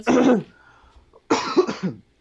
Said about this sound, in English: But for me, similar, sorry, I keep coughing.